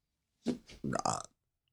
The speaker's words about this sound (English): You're so rude, burp.